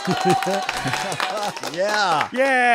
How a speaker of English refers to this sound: I thank you again, and the round of applause for you.